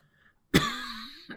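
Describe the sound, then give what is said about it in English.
A single harsh cough, caused by a tickly irritation in the lungs, bursts out after a moment of quiet, trailing into a raspy, throaty exhale with a brief second catch at the end. “You'll have to pardon the fact that I've got a little bit of a tickly agitation in my lungs that causes a cough.”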